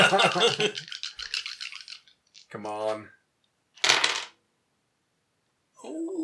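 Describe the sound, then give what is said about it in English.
Dice rattle as they are shaken, a voice mutters briefly, then a short, sharp clatter follows as they tumble across a hard surface. “Fucking dice.”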